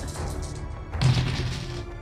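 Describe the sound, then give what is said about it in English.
Three dice rattle and clatter across a surface for about two seconds, a steady scattering of small hard clicks with a louder jolt midway, and no voices; they land showing a five, a five and a two. “Oh, go ahead and roll the dice.”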